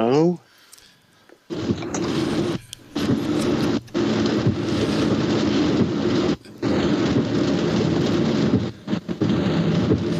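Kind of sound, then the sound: nature, heavy rain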